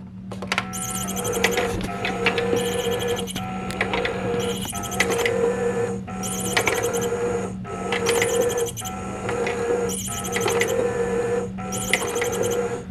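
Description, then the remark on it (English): A motorized cat toy with a feather attachment runs with its sound switched on, a steady mechanical whir broken by bright, high chirping bursts that repeat in a regular rhythm roughly every second. No one speaks. “Okay, so it turns off that little chirping sound.”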